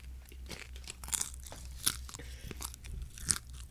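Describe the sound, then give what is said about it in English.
Loud crunching as someone bites into a crunchy taco shell and chews, with a burst of sharp, crackly snaps every half second or so and no talking. “All right, well, here we're gonna give the pod a live reaction to the tacos.”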